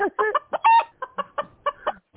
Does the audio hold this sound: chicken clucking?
yes